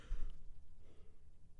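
A single breathy yawn, a drawn-out airy exhale that trails off softly over about a second and a half, with no talking.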